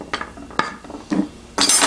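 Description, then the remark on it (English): A metal spoon from a travel cutlery set clinks a few times in sharp, bright taps spaced unevenly, ending with a louder, brief scraping clatter of cutlery. No one speaks. “And then you have your spoon.”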